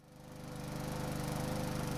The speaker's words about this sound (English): I'm awoken by the sound of a lawnmower. That's my landlord tending the garden.